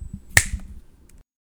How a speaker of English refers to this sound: You're falling asleep and getting sleepier at every second. And when I snap my fingers, you'll wake up in the past.